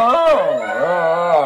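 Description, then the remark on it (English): A dog makes one continuous whining, whimpering vocalization that rises and falls in pitch, almost like talking. It is fairly loud, with no distinct barks and no other sounds. “My dog's talking to his buddy on Skype.”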